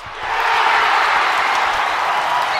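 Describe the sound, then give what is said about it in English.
A crowd cheer sound effect, played for Kerwin Walton's commitment to the University of North Carolina, swells in within the first fraction of a second and holds steady and loud, a dense wash of clapping and voices with no one speaking. “Now, people go, Gov, why do you give him a cheer?”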